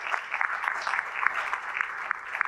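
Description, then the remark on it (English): An audience applauds the earlier presenters in ocular surface disease, clapping steadily for a couple of seconds, a dense patter of many hands with sharp individual claps popping out of the wash, no voices on top. “So if I could have a round of applause for all of our earlier presenters in ocular surface disease for all the great things that they're doing.”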